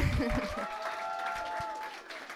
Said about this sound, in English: Everybody clap